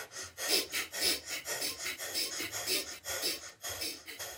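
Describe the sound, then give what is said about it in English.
Rapid, rhythmic meditative breathing, with sharp inhales and exhales repeating about twice per second at an even, steady pace, and no talking, while the breather silently chants Sat Nam. “So as I'm breathing, I'm chanting in my mind, Sat Nam, Sat Nam.”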